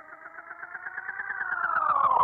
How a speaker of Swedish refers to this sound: Ja, men det börjar oscillera liksom. Och ett analog delay som börjar själv oscillera. Det blir som, det går ju liksom att nästan använda som en jävla synt.